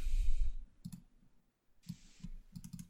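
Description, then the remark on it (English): Dice rolled for a charisma and intimidation check rattle briefly in a hand or cup, then scatter with a quick series of sharp clicks and clatters on a hard surface. There is no talking. “So she's going to roll against you.”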